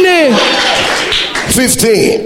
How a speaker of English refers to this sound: Shout hallelujah. And clap for the Lamb of God. And give the Lord a shout.